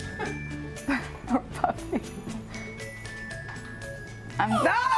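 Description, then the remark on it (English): An Italian Greyhound named Gio gives several sharp, high yips in short bursts, ending in a whiny bark, over a steady tinkling musical jingle in the background. “Sorry, it was Skinny Dog, and that's what I was going to pick. The Italian Greyhound named Gio.”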